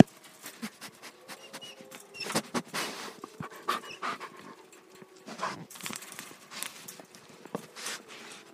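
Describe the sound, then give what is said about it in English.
A high-content wolfdog pants in quick, breathy bursts, the rhythm uneven, with soft shuffling and padding steps on the ground in between. No one speaks. “The noisy one is a wolf dog mid content, and the quiet one is a high content wolf dog.”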